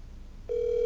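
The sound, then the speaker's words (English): A phone's ringing tone plays over a speakerphone: after a moment of low background hiss, a steady, slightly tinny electronic tone starts abruptly and holds unbroken to the end. “Put it on speaker so everybody can hear this.”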